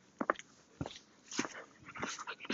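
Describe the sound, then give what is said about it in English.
A dog being walked gives several short, whiny whimpers in uneven bursts over a low, rustling outdoor background with no talking. “There's also another dog walker. This one has... Is that a pit bull?”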